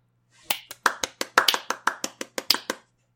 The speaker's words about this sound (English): Should we give him the applause that he craves?